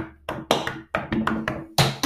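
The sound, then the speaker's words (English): A quick series of sharp knocks on wood around a house, about eight raps in an uneven rhythm, fairly loud with no one talking. “I just knocked on every wood in the house.”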